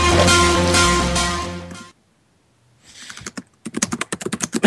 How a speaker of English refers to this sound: Some loud typing to start the show.